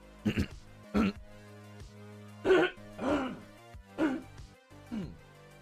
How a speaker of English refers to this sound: I just can't sometimes clear my throat without almost like instantly having a hiccup. It's so weird. Like, it's a weird quirk that I have.